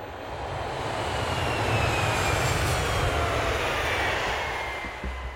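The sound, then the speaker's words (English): A steady, loud airplane engine drone fills the whole stretch, a broad continuous roar with a faint high whine above it and no voices. “I barely slept on the plane.”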